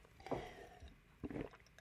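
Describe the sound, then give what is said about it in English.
A quiet sip of water: two soft, wet slurping or gulping bursts about a second apart, with faint rustling between them and no talking. “Hold on, I'm going to take a sip of water.”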